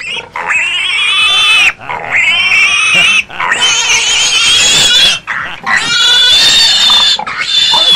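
A pig squeals loudly and shrilly in several long, strained bursts separated by brief pauses, with a few grunting oinks mixed in; no one talks.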